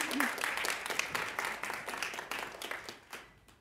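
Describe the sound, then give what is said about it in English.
An audience applauds performers with dense, steady clapping that gradually thins and fades out over a few seconds, with faint voices mixed in beneath. “You can give them another hand of applause.”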